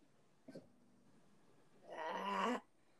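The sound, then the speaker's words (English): A short catch, then a raspy, growl-like throat clearing caused by mucus in the throat, lasting under a second and fairly loud, with a rough, gravelly texture. No one speaks. “There's mucus in my throat, and it won't come out.”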